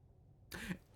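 A single cough breaks a quiet pause, a short husky burst with a bit of throaty voicing, followed by near silence before another sound starts right at the end.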